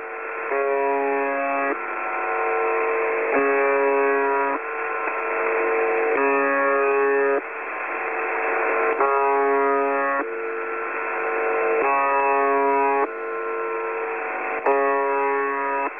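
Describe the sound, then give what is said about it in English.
A harsh, steady radio buzzer drones on without pause, pulsing in regular segments roughly once a second, its tone shifting slightly between pulses against a faint static hiss. “It was this buzzing noise, a buzzer that would go off second by second.”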